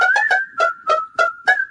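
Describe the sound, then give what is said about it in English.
A steady whistled tone holds over a twerk song's punchy beat, which thumps in regular pulses about three times a second. No voices, and the music is fairly loud. “this lady wanted to challenge you because she knew you couldn't whistle right now.”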